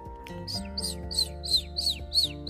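A small, colorful pet bird named Chirp chirps in a quick, steady series of about seven high, bright calls, fairly clear over a low constant background hum.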